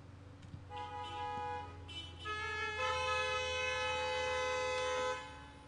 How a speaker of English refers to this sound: I appreciate the honks, but I'll never feel like that's a good thing. It feels like when someone honks at you, they're telling you to stop doing whatever it is you were doing.